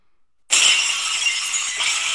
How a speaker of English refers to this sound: Yeah, the glass shattering, you 100% already know who it is.